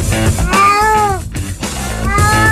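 A cat lets out two long, drawn-out meows in quick succession, loud, their pitch sliding up and down over a steady background rumble.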